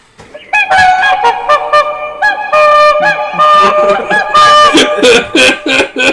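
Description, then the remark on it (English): Swan calls, a string of nasal, trumpeting honks repeating loud in quick bursts, several birds overlapping with no voices present. “Swans are known for their long necks.”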